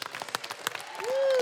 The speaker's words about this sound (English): And I know I said this at the top, but I want to say once again, we have some of the best projectionists in the country. So big round of applause for our projectionists.